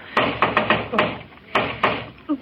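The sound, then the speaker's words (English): Mr. Scrooge knocking on the Cratchits' door: a quick run of sharp raps, then a short pause and two more firm knocks, with a muffled resonance behind each hit. “Well, open the door and see what he wants, Dag Cratchit.”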